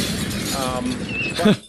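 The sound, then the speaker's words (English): A bomb sound effect: a sustained, noisy crash of shattering glass and debris that holds steady for over a second, then swells briefly and cuts off abruptly. “Ian, I don't know if you heard that, but the bomb went off.”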